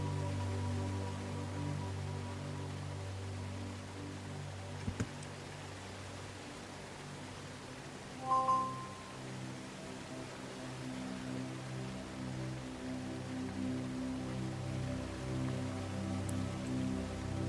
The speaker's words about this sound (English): Listen to the sounds of the ocean, the waves, the birds.